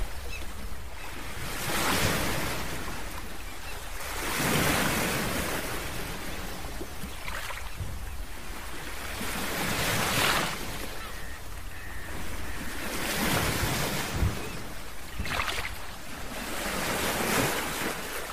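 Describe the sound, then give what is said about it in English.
Ocean waves break on a shore in a steady rhythm, each swell rising into a broad rushing wash and fading back, with a constant airy surf hiss and some wind underneath. “Listen to the waves.”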